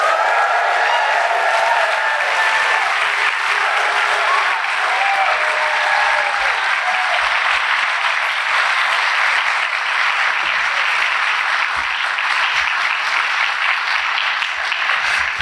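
An audience applauds guests being introduced at a live film show, people who had been sitting there for 20 to 25 minutes. The applause is steady for about fifteen seconds, a dense, even wash of many hands clapping at a constant loudness with no voices standing out.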